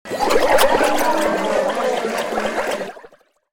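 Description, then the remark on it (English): Loud gurgling and bubbling liquid churns steadily for about three seconds, thick and wet, then cuts off abruptly into silence. “As he gibbers and bubbles.”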